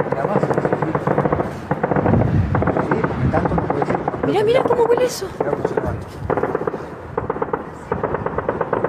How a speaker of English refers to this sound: This is what was on video that the civilians in the area, what they saw and what they heard. Sounds a lot like gunshots to me.